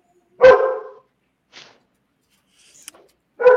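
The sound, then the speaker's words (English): The speaker's dogs bark loudly in the background, a strong bark at the start and another at the end, with a faint yip and a brief high squeak in the quiet gap between them. “Sorry, my dogs are barking in the background.”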